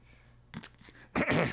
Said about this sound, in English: And it's to clear my throat.